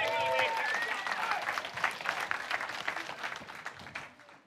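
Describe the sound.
Audience applause: a dense, steady patter of many hands clapping for several seconds, with a few raised voices at the start, gradually thinning out toward the end.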